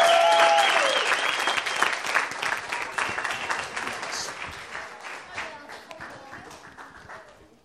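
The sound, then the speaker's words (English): Audience applause for the kids, a dense wash of many hands clapping that starts loud and slowly thins out over several seconds, with a few cheers mixed in near the start. “give the kids a round of applause, please.”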